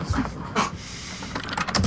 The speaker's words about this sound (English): Has that like old school keyboard.